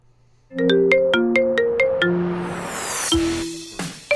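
A phone ringtone plays a rock tune: a loud run of bright electronic notes over a chunky rhythm, ending abruptly after a few seconds, with no one speaking.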